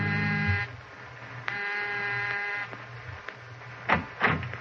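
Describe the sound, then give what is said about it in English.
A doorbell buzzer at an apartment door sounds twice: a short harsh electric buzz, then a longer one after a brief pause, followed by a couple of soft thuds. “Almost before he's out of sight, you're down the hall ringing the doorbell.”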